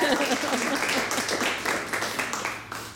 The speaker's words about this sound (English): Big round of applause.